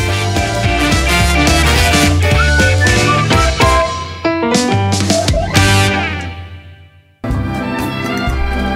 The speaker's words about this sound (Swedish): Vi simmar oss in i ännu ett fantastiskt avsnitt till lite visslande härlig musik